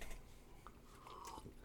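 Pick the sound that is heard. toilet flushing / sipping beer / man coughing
sipping beer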